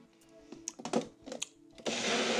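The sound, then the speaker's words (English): Clattering taps and knocks of a Magic Bullet blender being assembled, then the motor roars on abruptly with a loud, steady, grinding whir as it blends crunchy peanut butter, organic banana and ozonated water into a breakfast smoothie until the end. “Crunchy peanut butter, organic banana, ozonated water, put into the magic bullet.”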